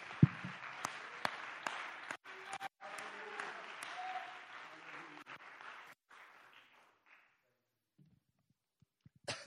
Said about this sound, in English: In the name of Jesus, let's clap our hands to the Lord together.